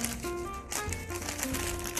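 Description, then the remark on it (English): A paper bag crinkles and rustles as it is folded up, a steady run of crackly bursts over two seconds, with a faint tonal hum underneath. “Oh, I love the cranky sound of that. Crinkle, crinkle, Mr.”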